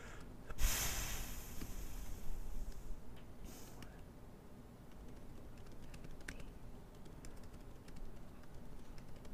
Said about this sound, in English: This is me typing furiously.